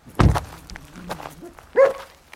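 At a large house near the village of Port Row in County Tipperary, overlooking Loch Derg, where two dogs live, a dog barks twice, a loud, gruff woof and then, after a pause with faint shuffling, a higher, more tonal yelp. No one speaks.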